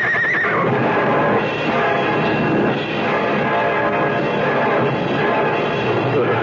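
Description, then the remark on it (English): Two injured runaway horses whinny loudly, their high neighs rising over a dense, continuous clatter of movement and commotion, with no talking. “The two runaway horses. The horses are hurt.”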